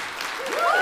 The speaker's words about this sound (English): So bring on 2022. We'll have another applause for that.